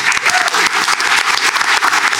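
A crowd claps steadily and loudly, a dense patter of many hands filling the whole stretch without pause, with no voices heard over it.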